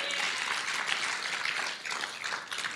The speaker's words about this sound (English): If you want to just go ahead and give Jesus a hand clap of praise, I'm not going to stop you.